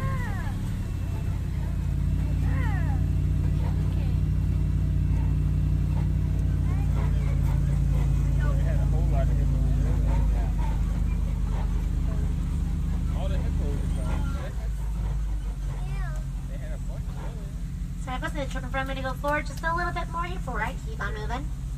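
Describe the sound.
Heavy engine rumble from passing trucks fills the scene, a loud, steady low drone that shifts midway as vehicles move by, with some voices rising over the traffic toward the end.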